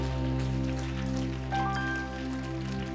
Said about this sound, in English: One more time, let's give God a hand clap of praise.